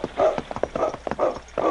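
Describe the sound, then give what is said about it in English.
Horse hooves clip-clopping in a steady, repeated rhythm, several clear hoofbeats, moderately loud, with no talking over them. “Sergeant Preston and King continued on to the point where the constable had lost the trail of the two horsemen.”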